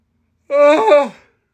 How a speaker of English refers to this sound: I can't stop yawning, and I'm not even lying down.